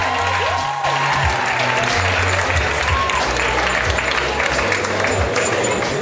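An audience applauds steadily for several seconds, a dense wash of many hands clapping at an even loudness, with a low tonal hum and a brief whistle-like note underneath and no speech.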